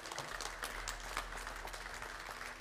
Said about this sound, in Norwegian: Skal vi gi denne mannen her et klapp?